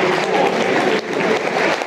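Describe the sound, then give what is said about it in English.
A football stadium crowd applauds steadily for Shay Ojo as he is substituted for Billy Mitchell after 72 minutes of a match against Bristol, a dense wash of clapping with a brief dip partway through before the applause swells back, fairly loud and sustained. “Good applause for Ojo, you can hear it.”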